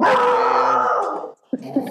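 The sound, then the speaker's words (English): A loud dog growl stretches for over a second, breaks off into a brief silence, then returns with a sharp bark-like snarl. “Is that dog part of it?”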